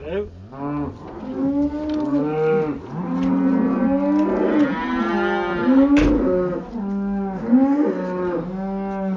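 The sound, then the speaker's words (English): Several cattle moo loudly and almost continuously in a cow shed, long overlapping lowing calls rising and falling one after another with a slight echo; the yard holds calving cows with their newest calves. “So I thought it'd be good to just have a look in the cow shed and understand what's going on.”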